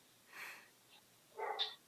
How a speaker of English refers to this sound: Sorry, the dogs are really distracting me.